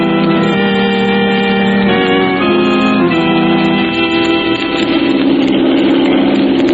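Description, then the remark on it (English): A steady, loud airplane engine drones continuously as the plane heads into a valley, with a deep, even hum and layered tonal whine, holding constant throughout without pauses or voices. “Before the sun sets, Margot, we're going to be in that valley. But we're going in by plane.”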